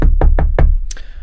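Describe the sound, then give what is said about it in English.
Four quick, evenly spaced knocks on a door during a role-played door-to-door sale, loud, followed by a brief sharp hiss or rustle as the knocking stops. “All right, so I'm at the door. You knock on the door.”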